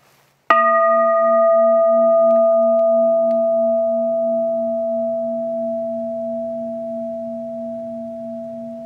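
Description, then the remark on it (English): A single bell is struck once and rings out with a bright attack, then a steady, pure-toned hum that sustains and slowly fades over several seconds, with no voices. “There are no words I could say to you that will be the same as simply hearing that bell.”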